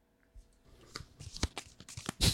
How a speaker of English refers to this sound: Okay, so this is the orange gluttony cards. Okay, so there's not that many. I'm going to shuffle them real quick and then draw the top card.